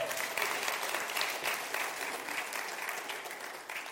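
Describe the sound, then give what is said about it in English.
An audience applauds a speaker as he is introduced, steadily for about four seconds, a dense, even wash of many hands clapping that holds fairly loud before tapering slightly at the end. “I don't usually get introduced, and so nobody ever claps for me, but, you know, that's kind of fun.”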